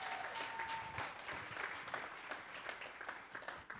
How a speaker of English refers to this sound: Give our next level band a big round of applause, guys.